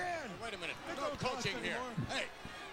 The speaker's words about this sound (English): Mr. Perfect now in the corner. Shawn Michaels whips him. Oh, Jesus. Back first in that top turnbuckle. Mr. Perfect is in trouble.